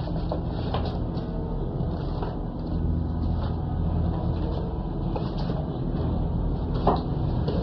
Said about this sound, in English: In front of me is $50,000 in 5 packets. Each packet contains $10,000 in $100 bills. I am placing this money in the desk drawer directly in front of me.